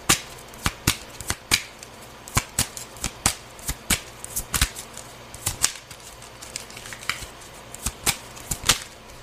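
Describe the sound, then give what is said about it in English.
Tarot cards being shuffled in a steady run of crisp, papery snaps and flutters, roughly two or three per second, with no one speaking. “Yeah, some of you, the Eight of Swords fell out reversed.”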